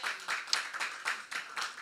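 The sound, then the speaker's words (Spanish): An audience applauds the group as its study of the Gospel of John nears its end, a steady wash of many hands clapping with a loosely pulsing rhythm at moderate volume, with no voices over it. “A big round of applause for you guys.”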